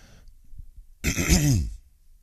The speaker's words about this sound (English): Excuse me. Sorry. Thought I was completely over that cough.